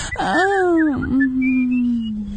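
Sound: person whistling a tune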